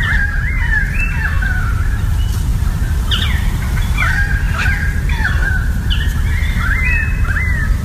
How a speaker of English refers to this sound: I'm in Melbourne, Australia, and there's two Australian kookaburras laughing at each other. And now we have some currawongs.